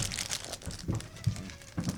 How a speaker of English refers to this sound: Someone eating some wrap snacks right now? What's happening? The timing is just amazing.